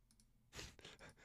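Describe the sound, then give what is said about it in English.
Quiet keyboard typing as "Scurrious OSRS" is typed into a search: a couple of light taps, then a short run of quicker, slightly louder keystrokes clicking in an uneven rhythm, with no voices. “I started typing in Scurrious OSRS, and the first result is Scurrilous OSRS.”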